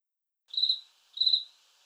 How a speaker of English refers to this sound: I loved it. I loved the crickets.